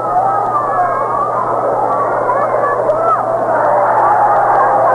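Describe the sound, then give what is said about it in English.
A baseball crowd applauding and cheering a fumble by the ball retriever behind home plate, in a steady, dense wash of noise with overlapping voices, holding a constant loudness throughout, over a faint low electrical hum. “The applause given for a boot by the ball retriever down behind home plate as the ball rolled off the screen.”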